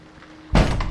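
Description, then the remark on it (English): After a moment of quiet, a storm shutter bangs once, a sudden loud, heavy thud with a deep rumbling body that rings on briefly. No one speaks. “It's just the storm shutters.”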